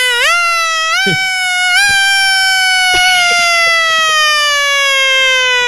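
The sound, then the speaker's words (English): A single voice imitates a wailing siren: a sustained, steady tone that steps up in pitch twice early on, then slowly sags downward over several seconds. “I was going to say a siren, but then you said there she is.”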